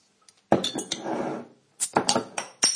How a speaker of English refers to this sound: There you go. It's that unmistakable sound of a bottle of Yuengling Lager being opened.